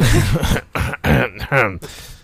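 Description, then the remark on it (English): A voice deliberately fakes a few coughs and a gravelly throat clearing, fairly loud, in quick bursts over about two seconds with brief gaps between them. “Four kids, cough, cough.”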